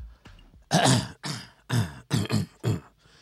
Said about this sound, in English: Let me clear my throat.